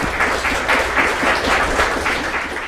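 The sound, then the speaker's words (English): An audience gives the speakers one last round of applause, a dense wash of many hands clapping at a fairly even, loud level with no voices standing out. “Let's give our speakers one last round of applause.”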